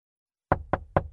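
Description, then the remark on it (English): Three firm knocks on a front door, evenly spaced, with a fourth beginning just as the sound cuts off; no voices, just the solid rapping after a brief silence. “Hear that? You're knocking on the front door of the new home you want to own.”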